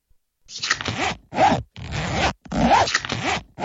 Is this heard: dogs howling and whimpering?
no